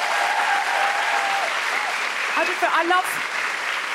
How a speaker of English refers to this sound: A big round of applause for everyone at the Sydney Opera House.